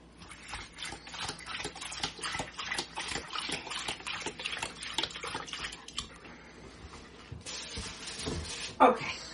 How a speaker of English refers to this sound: Tap water. Whatever water you use. I want you to fill up the bowl with water.